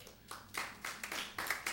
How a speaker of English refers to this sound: You might as well say, oh me, or give God a good hand clap of praise there.